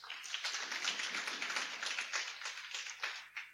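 A small group claps steadily for a few seconds, a dense patter of overlapping hand claps at moderate volume with no voices over it, thinning slightly toward the end.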